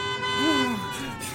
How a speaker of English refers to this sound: The blare of a car approaching rapidly behind me jarred me back to the task at hand.